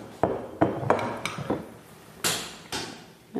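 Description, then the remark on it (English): Several sharp glassy clinks and taps in quick succession, then two short hissing splashes of 2018 Sette Fuentes wine, made of 90% Listan Negro and 10% Castellana Negra, being poured into glasses, with no one talking. “So we're just pouring now.”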